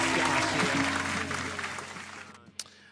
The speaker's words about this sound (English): Ah, yes. Hold on. Let's get some more applause in here, man. Let's get some more applause. Some more applause.